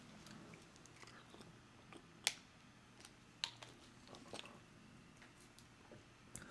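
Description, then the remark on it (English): Quiet drinking noises as someone takes a swig of water: a few soft gulps and wet mouth clicks spaced irregularly over a faint background hiss, with no one talking. “I'm going to take a swig of water instead of going to break.”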